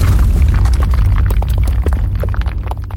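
A loud cannon blast with a deep rumbling boom that rolls on for several seconds, scattered with crackling, popping debris-like noise and no voices.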